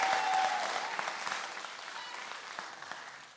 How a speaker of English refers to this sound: And some of y'all don't know who they are, but I just appreciate the clapping for them because that's a big, big deal.